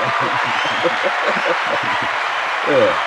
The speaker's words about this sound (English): Moving on. Give him a hand. Huh? I said, give him the applause.